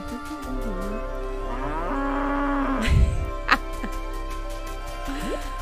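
A cow moos in long, drawn-out, wavering calls over a steady low hum, with a short thump partway through and a brief rising squeak near the end.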